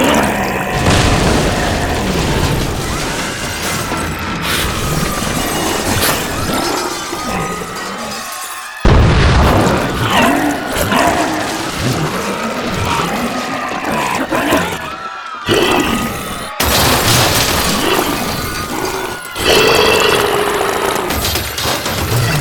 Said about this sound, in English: Why, I think, if I'm not mistaken, I can hear the dulcet tones of the marauding seaweed blob overtaking the docks and squeezing and stinking its way through the resort.